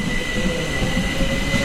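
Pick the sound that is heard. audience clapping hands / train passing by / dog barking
train passing by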